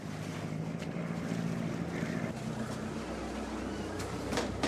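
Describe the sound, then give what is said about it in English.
A boat engine hums steadily as the boatman drives the vessel across water, with constant wind buffeting and rushing water noise filling the background; no one speaks. “This is your job, driving the boat, isn't it?”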